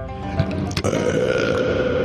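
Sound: belching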